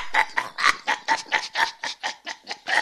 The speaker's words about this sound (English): Well, he's a very bright chicken.